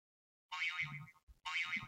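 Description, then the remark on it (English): A timer going off: a bright, warbling electronic tone that bends up and down, sounding twice in quick succession with a brief gap between, fairly loud with no talking. “I did not see the timer on that at all.”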